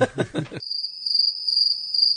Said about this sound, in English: Crickets.